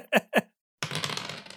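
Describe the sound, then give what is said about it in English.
Dice rolling on a table: two sharp clicks, then a short pause and a dense, continuous rattle of small hard objects clattering for about a second, with no voices. “Let me get my dice.”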